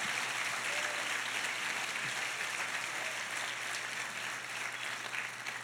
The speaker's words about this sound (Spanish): Fuerte ese aplauso a Go Jesús. Ahead, give Jesus a strong round of applause.